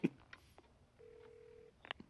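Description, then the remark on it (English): A desk telephone rings once, a short steady electronic tone lasting under a second, framed by a few handset clicks and knocks; fairly quiet, with no voices. “Oh, man, remember desk phones?”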